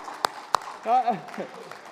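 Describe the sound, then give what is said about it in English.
Two sharp, separate hand claps, then a brief rising-and-falling cheering shout from a voice, cheering on a runner to finish a race. Thin and sparse rather than a full crowd's applause. “Come on, let's cheer for him.”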